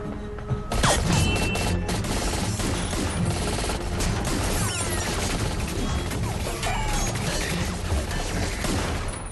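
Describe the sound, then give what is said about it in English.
Rapid gunfire rattles almost continuously, loud and dense, mixed with crashing, shattering glass as a light bulb is shot at, and clattering debris, with no voices. “Yeah, you really killed the glass. Like I was aiming for the bulb.”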